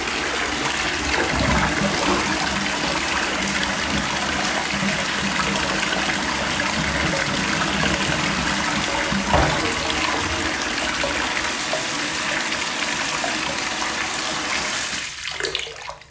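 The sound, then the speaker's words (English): Water sloshes and swirls loudly in a bathtub as someone moves around in the bath water, a steady churning wash of sound with no talking, that tapers off abruptly near the end. “Now I'm like moving around the water.”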